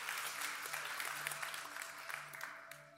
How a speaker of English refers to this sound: You can clap for that. That's right. Immediately.